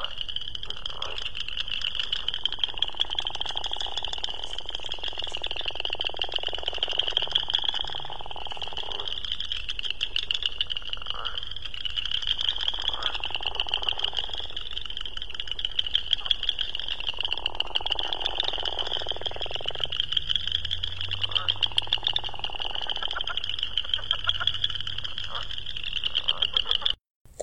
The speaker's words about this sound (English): That was the sound of the dusky gopher frog mating. So I liked the thing at the end where he kind of sounds like he's laughing. Very distinctive.